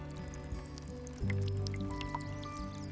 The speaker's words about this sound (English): The water flows over on top of my angelic angel and on top of my Michelangelo's David.